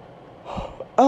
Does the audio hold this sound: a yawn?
yes